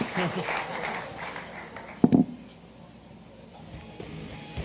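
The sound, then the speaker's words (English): Audience applause at a live show, a steady patter of many hands that gradually fades, broken by a brief sharper burst partway through before settling into a low murmur. “Clap for John's cool purple shirt.”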